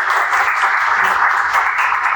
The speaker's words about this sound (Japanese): 皆さん、拍手をお待ちください。